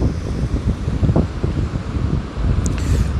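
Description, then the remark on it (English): Steady wind gusts buffet the microphone with a low, rumbling roar at a beach, while the broad hiss of surf washes continuously underneath. No one speaks. “You see a whole lot of interesting things at the beach.”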